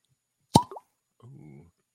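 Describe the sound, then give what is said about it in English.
A single sharp cork pop from an 8-year-old bourbon bottle, bright, with a short squeaky follow-through, then a brief low murmur of someone speaking afterward. “Good cork pop.”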